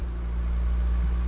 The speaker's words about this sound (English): What kind of car is that? This one? Yeah, it's a sad sounding car. Probably a Yaris.